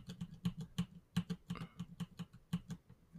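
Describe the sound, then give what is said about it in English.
Fast, uneven clatter of keys on a computer keyboard, a steady stream of sharp little clicks with brief pauses, fairly quiet, with no voices. “Really going to town on that keyboard.”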